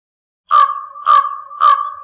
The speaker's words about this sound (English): Raven.